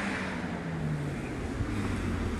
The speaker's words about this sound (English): But, excuse me, fast car.